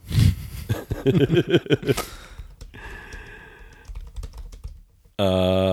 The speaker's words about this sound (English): typing.